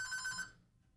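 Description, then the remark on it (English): A telephone rings with a bright, warbling electronic trill for about half a second, then cuts off, leaving faint low background rumble. No one speaks. “We're getting another phone call.”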